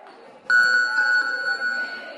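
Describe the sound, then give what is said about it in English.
A single loud boxing ring bell strike rings out, its bright metallic tone lingering and slowly fading over faint background murmur. “Okay, here we go. On the bell.”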